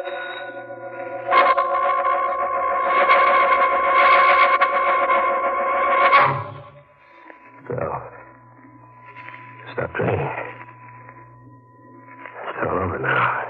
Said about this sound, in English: You'll hear that bell ringing in your mind as long as you live.